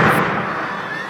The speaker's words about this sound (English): The base of the water tower exploded. The empty cistern fell to the ground in a plume of dusty wood.